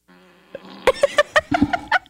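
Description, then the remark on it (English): A wet, sputtering fart sound effect played by an Alexa smart speaker: a low buzzing build-up breaks into a quick string of about eight juicy, popping bursts, loud, with no one talking. “That was a wet one. That was a pushing hard one.”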